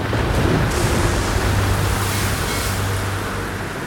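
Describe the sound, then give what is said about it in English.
A strong wind roars steadily over rough sea around a sailing ship nearing the Cape: a dense, unbroken rush of noise mixed with surging water and a faint low droning hum underneath, with no voices. “Winds blowing hard.”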